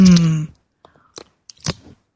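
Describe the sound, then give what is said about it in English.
A short voiced groan opens, then a few quick slurping sips of English tea follow in small bursts, quiet and wet-sounding, with no talking. “For all my friends who love to sip our tea or spiritual espresso together, this sip is for you.”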